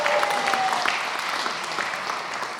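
A room full of people claps steadily, a dense, continuous patter of applause at moderate loudness, with a faint whistle near the start and no talking.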